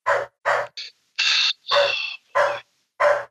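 A dog barks loudly, about seven harsh, rough barks in a quick, slightly uneven series, with short pauses between them and no one talking.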